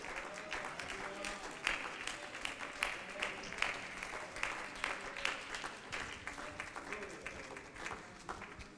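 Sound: audience clapping hands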